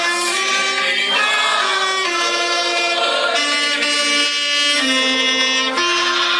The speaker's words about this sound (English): their little girl's playing a clarinet, and somebody's playing a saxophone, somebody else is playing a piano, and they're all singing